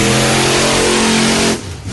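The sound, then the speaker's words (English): The engine of the monster truck Bigfoot revs loudly, a deep sustained growl lasting about a second and a half before cutting off abruptly into quieter rumble. “Now, growing up, did you always want to be a monster truck?”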